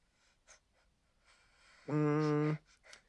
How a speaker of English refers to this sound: Whoa, little nasty burp there.